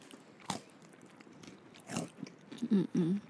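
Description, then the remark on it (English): Crunchy bites into a pretzel candy bar with peanut butter and caramel, two sharp crackling snaps about a second and a half apart, followed by a few muffled, rhythmic chews with no talking. “The crunch is satisfying for me. I'm gonna have my other one.”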